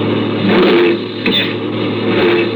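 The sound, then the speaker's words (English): A loud truck engine revs and drones steadily as the driver, with no brakes, tries to get it into gear, with a brief harsh grinding clunk about halfway through as the gears fail to mesh. “No go. I can't get the gears to mesh.”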